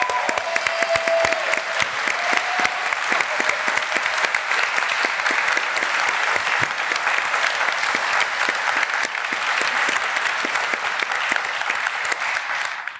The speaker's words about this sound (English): So I'm going to make him stand up, and I would like you all to give him a big round of applause.